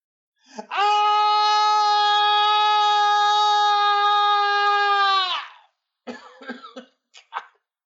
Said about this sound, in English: What was the yelling for? I don't know.